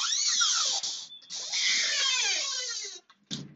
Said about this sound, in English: We can't expect, and excuse me here as this door opens, it's going to be loud.